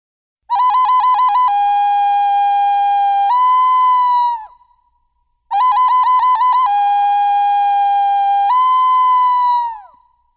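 A bird call, whistled twice in identical phrases: each opens with a quick fluttering trill, then settles into clear, steady held notes that end with a slight upward lift. Loud, with no talking.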